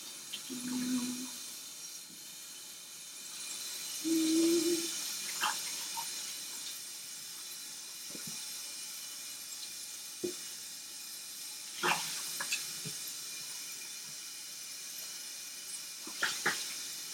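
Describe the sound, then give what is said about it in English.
A kitchen tap runs steadily while a metal pot lid is washed beneath it, with occasional sharp clinks and clatters of metal against the sink. No one speaks. “And then you wanna wash your lid.”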